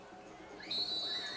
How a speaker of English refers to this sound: As we finally get the whistle.